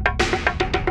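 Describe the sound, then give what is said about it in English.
An exaggerated, souped-up heartbeat, as a heartbeat would sound with a super organ: a rapid run of loud, bright, ringing pulses, roughly seven in a second, each with a tonal buzz, with no one talking. “But with a super organ, your heartbeat will sound like this.”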